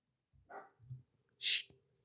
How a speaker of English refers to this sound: Shh. All right. Alfred making some noise, trying to be a little guard dog, you know what I mean?